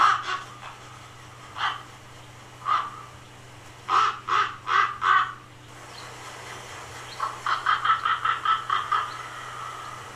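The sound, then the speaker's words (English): Harsh, croaking calls from an Australian raven, given in a few separate caws and then two quick rhythmic runs of about four and eight notes, the last series ending in a drawn-out, fading croak. “So that looks like it's an Australian raven”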